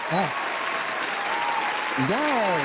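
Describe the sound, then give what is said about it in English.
Steady, dense audience applause fills the whole clip at an even loudness, with a few voices rising over it briefly near the start and again toward the end. “We're going to give them an applause for supporting you and that they keep on supporting you throughout your musical journey.”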